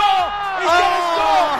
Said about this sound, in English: No, he's mobbed by his teammates. And the crowd here at Bankwest goes crazy. Their man, Mike Acebo, has scored just before half-time.